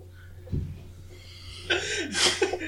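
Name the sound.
heavy breathing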